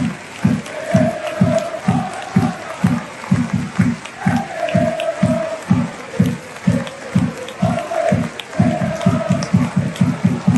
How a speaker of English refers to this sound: That's them chanting, if you hate the royal family, clap your hands for the entire minute silence at a Celtics match.